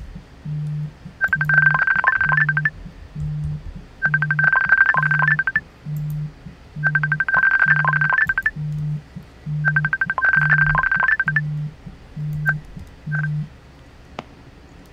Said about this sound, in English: Oh, hey, we're getting a phone call here.